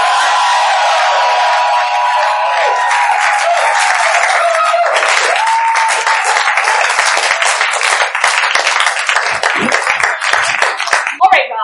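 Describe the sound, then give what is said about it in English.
An audience cheers and applauds loudly and steadily for the Nerdologues coming to the stage, with whoops and shouting voices over dense clapping that grows sharper and more scattered toward the end. “Let's cheer for the Nerdologues!”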